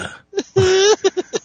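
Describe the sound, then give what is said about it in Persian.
A voice mimics a burp: a short croak, then a drawn-out, rasping voiced belch sound lasting under half a second, followed by a few quick clipped vocal bursts. Fairly loud. “وقتی آبش میاد چیزش آروغ میزنه.”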